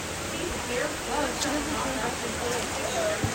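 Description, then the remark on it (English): Heavy rain pours down in a dense, unbroken, loud hiss that fills the whole scene, with faint murmuring voices half-buried beneath the downpour. “Are you getting worse? The rain?”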